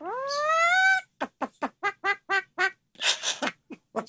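Kaleo, a pet mynah bird from the YouTube channel CMH Hawaii, mimics a duck, giving a drawn-out whiny call followed by a quick run of about seven nasal quacks and a raspy squawk, loud with no talking.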